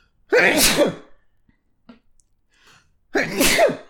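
Two loud sneezes, each a sharp breathy burst, separated by about two seconds of near silence with faint breaths or rustles in between.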